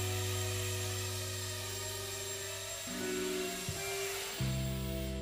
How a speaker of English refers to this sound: It's come back. So it's a cameraless drone. It can't take any pictures, can't do any surveying. And it's just what I need to sort of like get that hand-eye coordination. And I've got my eyes on the drone all the time.